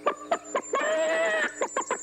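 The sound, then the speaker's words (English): A human voice mimics a chicken, with short clucking bursts around a longer, drawn-out squawk in the middle, fairly loud, then more quick clucks at the end. “I will not be able to have a civil conversation here if you keep clucking.”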